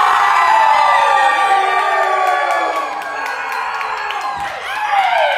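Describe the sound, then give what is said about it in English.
A large concert crowd at the Cafe Colonial in Sacramento, California, waiting for the show to start, roars with sustained cheering and high whoops, a dense wall of many voices that stays loud throughout, dipping briefly before surging again. “And this crowd is anxious and we're waiting for the show to start. You guys ready? Yeah!”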